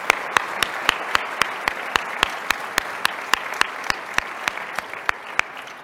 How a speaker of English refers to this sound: If we want, can we give another round of applause for our panelists for being here today?